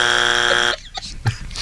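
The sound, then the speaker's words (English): A loud, harsh game-show buzzer blares for a wrong answer, 'loopy', to a question asking another way people say stoned: under a second of dense, raspy harmonic drone, then an abrupt cutoff leaving faint breathy noise and a small thump. “You got one buzz left.”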